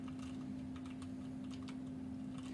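Rapid, irregular keyboard typing of a message on a computer, a quick patter of soft clicks, running over a steady low electrical hum with no one talking.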